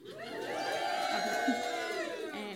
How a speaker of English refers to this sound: After speaking to the organisers of tonight's wonderful event, pause for cheers and applause.